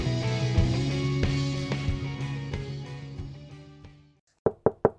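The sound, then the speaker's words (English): Music plays and fades out, then three quick, sharp knocks on a door ring out in the silence, evenly spaced. “And there's the knock we have been waiting for here at Footy Locker HQ.”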